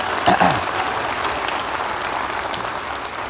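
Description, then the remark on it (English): An audience applauds steadily, a dense wash of many hands clapping at an even loudness throughout, with no one speaking over it. “God bless you guys. Give them a hand.”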